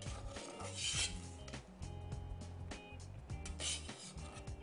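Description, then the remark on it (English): A ladle scoops cooked vegetables out of a soup pot to be hand mashed as a natural thickener for the soup, with repeated scrapes and metallic clinks against the pot over a low background hum. No one speaks. “The reason I'm also gonna take out some of these and mash it is it's a natural thickener.”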